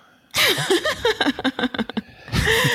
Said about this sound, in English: I know, I started breathing directly into the mic and realized that's no good.